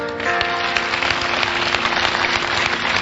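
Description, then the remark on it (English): An audience claps steadily and densely for a few seconds, the applause holding at an even, loud level throughout, with some sustained musical tones humming underneath. “You are now clapping.”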